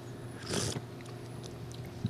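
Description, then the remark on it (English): A single short slurping sip of a drink with a slice of blood orange in it, a brief airy burst over a low steady background hum, followed by quiet. “All right, I'm going to sip this thing.”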